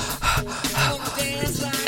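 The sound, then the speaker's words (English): Someone breathes heavily, a quick run of loud, raspy gasps and exhales in an uneven rhythm, as if deliberately panting for air. “Now I'm going to start breathing heavy over here.”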